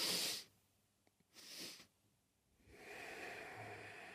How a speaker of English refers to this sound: What I like to do is breathe two breaths in and then an exhale. Looks like this.